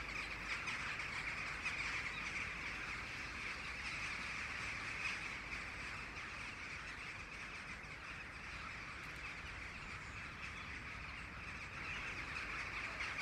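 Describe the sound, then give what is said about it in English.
A dense, continuous wash of countless bird calls from a huge flock, steady throughout with no single voice standing out, heard from a moderate distance and no one speaking. “And if we look up above, there's about between 5,000 and 10,000 rooks coming in from perhaps 20 miles away from the fields.”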